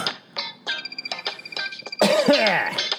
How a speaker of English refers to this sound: I'm going to leave that little cough in there. I'm not going to edit it out. I'm not going to start over.